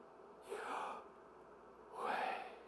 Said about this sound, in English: It came from the bodily expression of just deep breathing because they recognized that that was just, man, sometimes that happens.